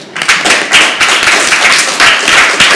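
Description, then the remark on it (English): An audience applauds with dense, overlapping claps in a steady burst lasting a few seconds, fairly loud, with no one speaking over it. “If you would have felt comfortable and okay with that, go ahead and applaud.”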